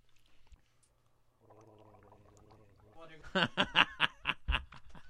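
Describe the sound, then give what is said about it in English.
A drawn-out, bubbly slurp of milk with a faint tonal whine, followed by loud, rhythmic bursts of snickering laughter. “That was me slurping milk.”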